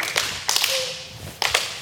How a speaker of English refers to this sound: That is such a timid clap.